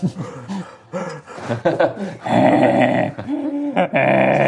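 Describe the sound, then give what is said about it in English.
A voice imitates a dog's heavy breathing with loud, rasping pants and growly huffs that build into a sustained, rough rumble. “You hear the heavy breathing of Bertie”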